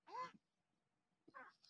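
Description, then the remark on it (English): A person with a rib injury, wearing a brace, tries to stifle a sneeze: two short, strained, nasal bursts separated by a brief pause, fairly loud, with the second one ending in a hissy release. “So I try to stifle a sneeze.”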